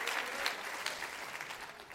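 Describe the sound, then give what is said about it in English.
A church audience claps hands steadily during a Wednesday night service, a dense, continuous patter of many overlapping claps at fairly strong, even loudness throughout. “Somebody clap your hand and say, fill me up, Lord.”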